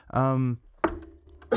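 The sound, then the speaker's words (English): A short voiced throat sound, then two sharp, harsh coughs, spaced well apart with quiet between them. “excuse me, bang and cough.”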